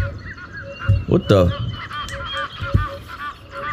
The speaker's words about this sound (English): Oh, it's birds in the background. I had birds in the background of this damn thing. I thought that was outside.